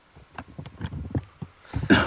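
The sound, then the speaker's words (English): A string of short, rough coughs, made while eating a Terry's chocolate orange, sputters out in quick bursts, then ends with one louder, harsher cough. “Excuse me for coughing there.”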